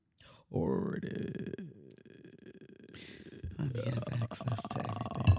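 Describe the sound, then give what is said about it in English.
A drawn-out, guttural throat-clearing grunt, low and rumbling with a raspy, burp-like quality, swelling louder toward the end over a few seconds with no words spoken. “You know that's how you're supposed to clear your throat.”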